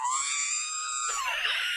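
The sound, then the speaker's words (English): A loud, shrill scream sounds as a timer alarm, one sustained piercing note that breaks into a raspy, ragged shriek before cutting off, alone with no talking. “You get screamed at and drunk.”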